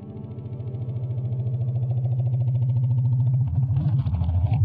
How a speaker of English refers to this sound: They're well on their way when the engine of the flying machine starts to make strange noises. They're in trouble.